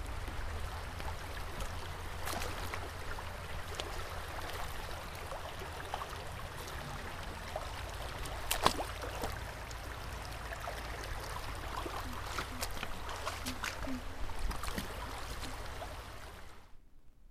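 Water pours and splashes steadily through a sieve for about sixteen seconds to free insects from debris, a continuous rushing trickle with a brief louder splash midway before it cuts off. No one speaks.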